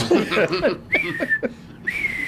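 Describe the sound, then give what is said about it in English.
A person whistles a short birdlike call, a couple of sustained high tones with a slight warble, mixed in with brief bits of talking and laughter. “But that bird, he's never heard before. Bird. That was at a particular whistle.”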